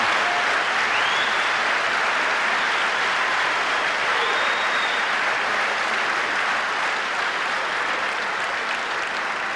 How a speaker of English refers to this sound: I can see from your applause, sisters and brothers, that you agree with the report.